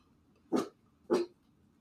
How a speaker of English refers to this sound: That's the new puppy Ramona at the imperfect party.